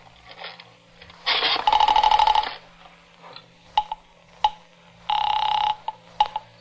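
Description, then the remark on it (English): A telephone receiver is lifted to call the police, with sharp clicks and rattles, broken by two loud buzzing, ringing bursts on the line, with no voices. “I reached for the phone.”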